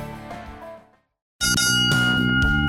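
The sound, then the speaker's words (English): A bell rings and its tone fades away, then after a brief silence it is struck again, loud, with bright metallic overtones sustaining to the end. No voices. “Bells and all is well.”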